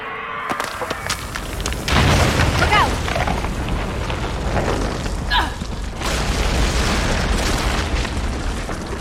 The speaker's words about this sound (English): What was that noise, Shepard? Sounded bad. Cave in.